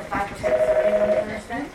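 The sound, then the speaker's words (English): An electronic telephone ring sounds as a steady, clear tone lasting under a second, with a lower tone joining briefly, amid faint background murmur at a women's clinic in Houston. “Last week, at a women's clinic in Houston, phones were ringing off the hook.”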